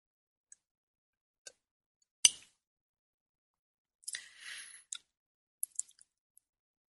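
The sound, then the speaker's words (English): Quiet sounds of someone sipping espresso from a cup: a few light clicks and a sharp cup tap, then a brief airy slurp, followed by soft swallowing clicks. No one speaks. “I'm going to take a sip of my espresso here.”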